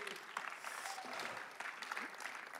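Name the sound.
audience applause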